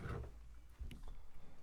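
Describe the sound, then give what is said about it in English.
Modelito beer is poured into a glass, a soft, steady glug and fizz with low rumbling and a brief splashy burst midway, quiet, with no talking. “The pour on the Modelito.”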